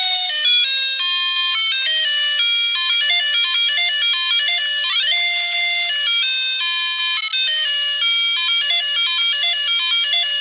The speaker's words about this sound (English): It's the Peppa Pig theme, but it's played on a $1 piano toy.